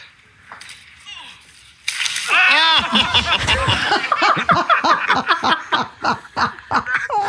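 A child on a sled crashes into a bush with a sudden loud rustling burst after a quiet stretch, followed by several seconds of high-pitched squealing laughter and excited shrieks.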